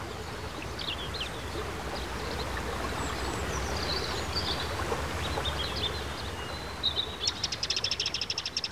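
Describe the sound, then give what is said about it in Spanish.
Birds sing over a steady, rushing jungle backdrop at a Maya community meeting place surrounded by jungle, scattered high whistles and chirps throughout, ending with a rapid, pulsing trill of repeated high calls in the final seconds. “En este lugar rodeado de selva, se escuchan cantos de aves, conversaciones en lengua maya, risas de niñas y niños que aprenden a bordar en la escuelita maya, el silbido del viento.”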